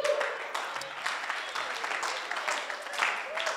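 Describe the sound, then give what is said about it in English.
An audience claps for the Lord as they take their seats, a dense, steady burst of applause, many hands overlapping into a bright crackling wash that holds its level for several seconds, with faint voices mixed in. “Sit on top of your enemies as you clap for the Lord.”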